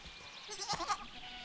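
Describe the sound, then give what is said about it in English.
Several goats bleat in quick succession, their wavering, nasal cries overlapping for about a second against a faint background hiss. “So many goats.”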